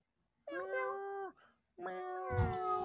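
Two drawn-out, tonal meows follow each other with a short pause between, fairly loud, sounding like a person imitating a cat; a brief breathy burst lands under the second call.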